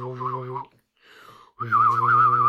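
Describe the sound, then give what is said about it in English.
A person hums a low steady note while whistling a wavering higher melody at the same time, two simultaneous tones, in two loud bursts separated by a brief, quieter whistled stretch. “It's humming while whistling. And that, sir, was a polyphonic tone. Because it's two tones at once.”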